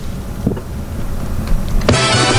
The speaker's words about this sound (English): Oh, well, I thought. There went the car machine.